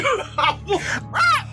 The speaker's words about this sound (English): Let a parrot curse. Let a parrot curse at me, dog.